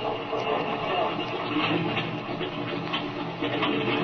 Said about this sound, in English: Well, I guess I'd better get in this rear cockpit and start the motor. It can be warming up while Speed's looking over Bender's air wing. Fine, that's a good idea. I'll let her idle a minute and then rev her up.